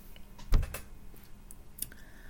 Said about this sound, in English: The chair I'm sitting on is making a lot of noise. It's an old chair, so forgive me. But if you hear that squeaky sound, it's not a door, it's a chair.